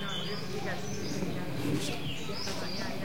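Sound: birds chirping outdoors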